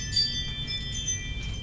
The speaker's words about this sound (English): You had to wait for the musical chimes.